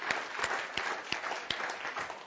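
A church audience claps steadily as a hand of praise to the Lord, a dense wash of many hands with a few sharper, louder claps standing out at irregular moments. No one speaks over it.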